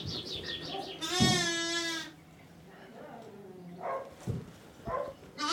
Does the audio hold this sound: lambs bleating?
yes